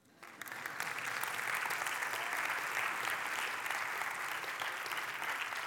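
A crowd breaks into sustained applause for the teams Kingwood sends to Honduras, the clapping swelling within the first second and holding steady and full for several seconds, a dense wash of many hands with no voices on top.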